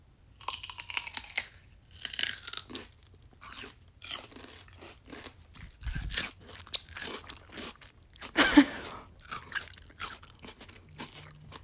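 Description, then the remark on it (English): Crisp crunching of celery sticks with peanut butter and cream cheese being bitten and chewed, a steady series of sharp snaps and wet crunches over about twelve seconds with no talking. “so, like, here, enjoy some ASMR of us eating celery with peanut butter.”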